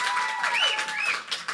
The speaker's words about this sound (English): That was incredible. Can we please give her another round of applause?